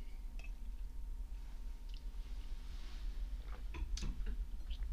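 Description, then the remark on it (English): Someone quietly sips Carlo Rossi Merlot red wine from a glass, with soft wet mouth sounds, small clicks and a brief slurp over a low steady background hum, and no talking. “So I'm going to take a sip, and then I'm going to take you on a little journey.”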